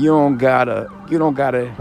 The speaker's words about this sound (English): I got some ambulance drive past me. Hopefully you can hear me.